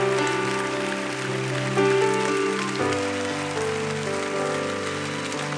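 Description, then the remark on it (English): A church audience applauds to encourage people coming forward to the altar, a steady, dense wash of clapping while sustained organ or keyboard chords play underneath, shifting harmony a couple of times; no one speaks. “And while they do that, we want to encourage them and cheer for them.”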